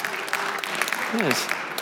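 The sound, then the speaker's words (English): A crowd claps for about two seconds, a dense, steady patter of hands at moderate volume, with a voice briefly audible partway through. “I don't know, you can clap a little bit.”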